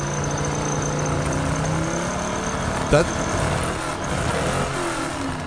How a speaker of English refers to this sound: That sounds like there are two engines running at the same time. That's basically what it is.